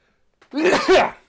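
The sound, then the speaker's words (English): A single sneeze, fairly loud: a short sharp intake, then a breathy, partly voiced burst that trails off within about a second. No talking. “The end credit scene made me sneeze.”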